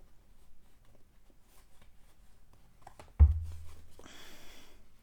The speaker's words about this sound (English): Okay, let's pick a little affirmation card. I'm just shuffling them. I usually never shuffle them.